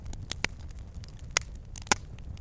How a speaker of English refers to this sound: Ah, you hear that? The sound of a crackling fire. But this isn't just any old campfire. This is a smokeless solo stove fire pit. How can you tell? Well, you don't hear any coughing, hand wafting, or people complaining about smoke in their eyes.